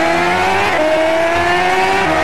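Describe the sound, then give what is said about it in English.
A steady, loud engine drone with stacked harmonic tones that shift in pitch as if revving, from a car racing video game played by holding paper while a camera tracks the hands, with no voices present. “Here the camera is actually understanding how you're holding the paper and playing the car racing game.”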